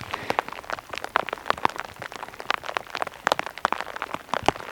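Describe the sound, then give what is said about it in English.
Loud pattering of rain striking the fabric hood worn by a hiker, heard from under the hood while hiking in the rain, with dense irregular taps and a steady hiss, no voices. “That's always the amazing thing about hiking in the rain, is when you have a hood on and the sound of the rain is amplified, and then you take your hood off and all of a sudden you realize how quiet the rain actually is.”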